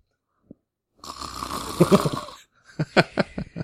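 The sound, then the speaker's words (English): A loud, rasping snore drawn out for over a second, then a quick series of short, whistling exhales, like an exaggerated imitation of snoring with a whistle, clear, relating to the 1959 animated film Sleeping Beauty. “My favorite part is the second snore after. I like the whistle.”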